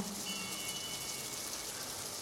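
nature, rain falling

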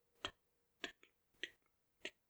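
household object, ticking clock

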